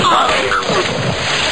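A loud, sustained splash of holy water as Popeye baptizes Brutus, a noisy rushing slosh that fills about a second and a half at steady volume, with a faint voice briefly audible at the start.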